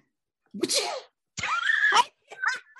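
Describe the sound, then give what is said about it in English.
A person vocally imitates a sneeze: three loud bursts, a sharp breathy intake followed by a drawn-out nasal exclamation, then a shorter final burst, with no other talking. “I sounded like I was sneezing.”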